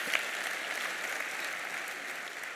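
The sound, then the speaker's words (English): A church audience breaks into steady applause for the Lord during a sermon, a dense wash of many hands clapping at once, sustained at an even level for a few seconds with no voices rising above it. “Yeah, come on, let's give the Lord a round of applause for that.”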